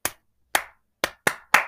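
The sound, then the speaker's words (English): Five sharp hand claps ring out clear in an uneven rhythm: one, a pause, one more, then three quicker claps, with no talking. “I Motherfucker just clapped twice.”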